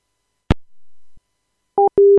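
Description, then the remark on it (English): A sharp click of a phone receiver as a man hangs up the call is followed by a short pause, then a telephone busy signal starts with two loud, steady electronic beeps in a clipped on-off rhythm. “I think he hung up to go drink.”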